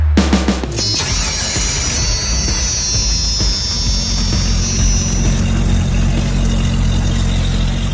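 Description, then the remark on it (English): An AMC straight-six engine in a Jeep Wrangler YJ, newly installed, cranks briefly, catches and settles into a steady, rumbling idle, loud, with a faint high whine fading out partway through. “Those sound like AMC straight six noises.”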